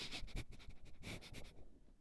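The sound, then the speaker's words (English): A rapid series of loud, exaggerated sniffs through the nose, about eight quick sharp inhalations in a row, then a brief quiet stretch at the end. “Oh, yeah, we can sniff it out.”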